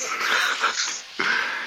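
Heavy, close-miked breathing: a long, raspy exhale followed by a brief pause and another sharp, noisy breath, loud and airy with no talking.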